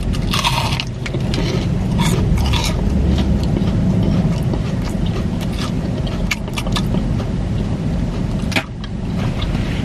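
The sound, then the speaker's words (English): Crunchy bites and wet chewing clicks of someone eating a hush puppy repeat irregularly over a steady, loud low rumble of a running car engine, with no one speaking. “We gonna try a hush puppy.”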